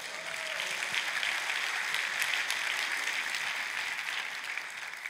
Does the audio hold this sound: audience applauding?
yes